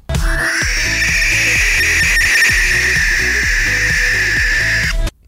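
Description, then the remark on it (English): A barn owl's harsh, hissing screech holds steady and loud for about five seconds, then cuts off, while rhythmic background music pulses underneath. “That was a barn owl.”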